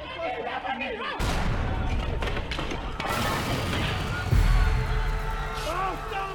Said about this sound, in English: The walls of the church exploded inward. The young mother reeled from the impact.